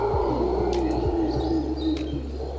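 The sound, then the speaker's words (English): A few brief, scattered bird chirps ring out in a forest over a steady, dense ambient drone, like a forest chorus. No one speaks. “We also could find other frogs and other birds and even howler monkeys.”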